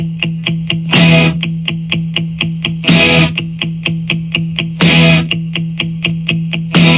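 Instrumental rock song opening: a distorted riff pulses in steady, rapid eighth notes over a sustained low tone, with loud crash-like bursts every two seconds. No vocals.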